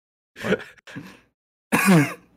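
Close, loud coughing straight into a microphone: two short rough bursts followed by a longer, harsher, throaty cough, with brief silences between them and no talking.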